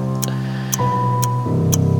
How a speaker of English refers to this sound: Yes, I just sat there and I listened to the clock as it kept ticking. Ticking away all our lives.